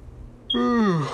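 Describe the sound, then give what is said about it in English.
A single drawn-out yawn from a voice, starting abruptly after a brief quiet moment and sliding downward in pitch into a low, groaning exhale. “Oh, God, I'm about to yawn.”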